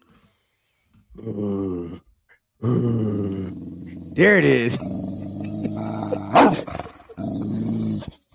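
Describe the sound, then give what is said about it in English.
Deep, rough animal growls rumble in several loud bursts over about eight seconds, some swelling into snarling peaks, with a brief spoken phrase mixed in. “No team is safe when the Niners are about to growl.”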